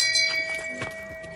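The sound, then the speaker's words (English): A church bell tolls, its ringing tone hanging steadily in the air while soft knocking, hoof-like clatters sound beneath it. No one speaks. “Like, get the shame bell for him.”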